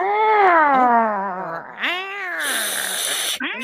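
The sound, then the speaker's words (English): A voice imitates a drawn-out, complaining, dissatisfied cat meow, a long wavering yowl that rises and falls, followed by a second whiny meow. Fairly loud, with no other talking. “And then we have the dissatisfied meow.”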